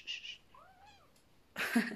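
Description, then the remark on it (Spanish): A pet cat gives one short, rising-and-falling meow at moderate volume while pulling at a person's hair, set between brief bursts of rustling noise at the start and a louder burst of noise at the end. “Pero, ay, mi gato me está jalando las greñas.”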